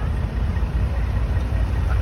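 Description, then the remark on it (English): A steady low rumble of large truck engines idling in a parking lot, a continuous droning hum with no clear breaks, like heavy trucks sitting with motors running. “And all the trucks.”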